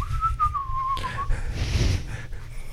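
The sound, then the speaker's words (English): In a cave, a person whistles a short, clear melodic line lasting just over a second, its pitch gliding gently, over a steady low background rumble that continues after the whistling stops. “And … starts whistling in the back with that one.”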